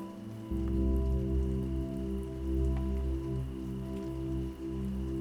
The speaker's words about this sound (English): As your body melts deeper into your bed, see if you can notice the soft sounds of raindrops in the background. Gently tapping on your window.